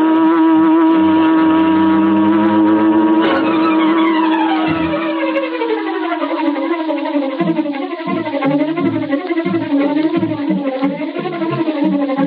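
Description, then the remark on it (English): A huge, sleek black car, the Green Hornet's Black Beauty, revs loudly and pulls away, tires squealing as it accelerates, with the engine note climbing and wavering continuously for several seconds. No one speaks. “As Bleeker's car swung into the street and turned toward Schaefer's parking lot, a huge, sleek black car started along behind them.”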